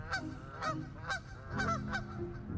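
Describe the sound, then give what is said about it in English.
A large flock of geese honks together in overlapping, repeated calls, a dense and continuous chorus of loud nasal cries with no one voice standing apart. “It just feels like this orchestra of birds.”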